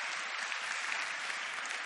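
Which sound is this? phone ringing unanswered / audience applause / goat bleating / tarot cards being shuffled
audience applause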